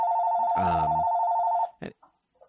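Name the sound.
telephone ringing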